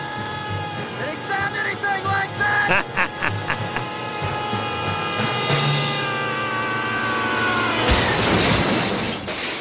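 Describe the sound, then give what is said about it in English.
A man lets out a long, shrill, wavering scream for several seconds as he falls from the edge of a roof, then a sudden loud crash as he lands on a car, with shattering glass and metal. “So he lands in a car. Died squealing like a pig.”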